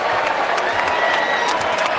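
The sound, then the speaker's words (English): A packed arena crowd at a New York Knicks basketball game against the Indiana Pacers roars and cheers as the Knicks win, a steady, loud wash of noise with scattered applause and shouts rising through it for the full two seconds, no clear voice standing out. “The crowd appreciative.”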